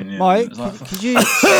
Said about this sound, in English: So I give him about 20-30 seconds, and then I start coughing heavily, and then nothing happens.